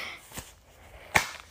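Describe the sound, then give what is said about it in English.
Two sharp hand claps with a pause between them, the first softer and the second loud and crisp, against a quiet background with no talking. “And he clapped his loud hands together.”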